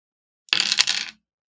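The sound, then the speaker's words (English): Several eight-sided dice (D8s) are rolled for damage in a tabletop game, clattering across a table in one quick burst of hard, rattling clicks lasting under a second, with no talking over them. “Let me roll my dice here.”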